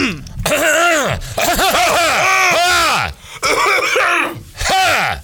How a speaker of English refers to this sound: What is wrong with y'all's throats? I mean, excuse me, let me clear my throat.